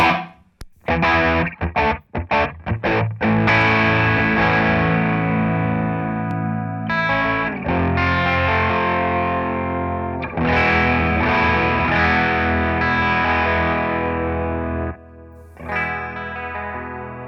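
Electric guitar, a 1978 Ibanez Iceman, played through heavy distortion and the swirling chorus of a 1976 Roland DC-50 Digital Chorus, starting with a few choppy stabs before settling into loud, sustained chords and riffs, full, with no talking.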